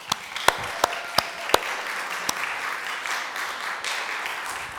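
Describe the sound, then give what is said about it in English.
A church audience applauds steadily for the pastor and everyone involved in the church's ministry, a dense wash of clapping with a few sharp, louder individual claps popping out near the start. No one speaks. “give Pastor Peter and everybody involved in the ministry in this church a round of applause”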